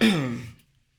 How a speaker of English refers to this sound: Damn, I coughed on this.